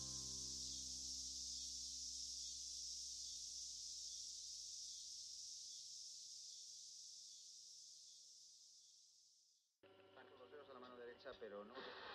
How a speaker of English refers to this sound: Do you hear them? Hear what? Cicadas.